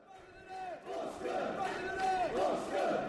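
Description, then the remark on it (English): A football crowd of travelling Bournemouth fans in the East Midlands cheers and chants in a dense, sustained roar after Phil Billing scores, with many voices swelling into rising and falling sung tones, growing louder toward the end. “right in front of those travelling Bournemouth fans who are loving their day out in the East Midlands so far”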